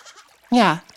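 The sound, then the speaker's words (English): A person imitates a goat with a single loud, wavering bleat lasting about a third of a second, preceded by quiet background murmur; the bleat voices a goat's triumphant call after it defeats its rival on a rock and takes charge of the rock. “The goat that defeated Penelope defeats its rival on the rock and is now in charge of the rock. Let's out a triumphant meh.”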